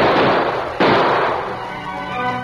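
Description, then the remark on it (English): Gunshots ring out near a sheriff's office at a man racing away on a lawman's horse, a loud blast followed by a second sharp crack about a second later, each trailing off into a rough, rumbling echo. No voices are heard. “Dan Reed and a number of townsmen were near the sheriff's office when Dave raced away on the lawman's horse with bullets flying over his head.”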